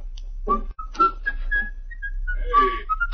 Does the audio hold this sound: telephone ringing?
no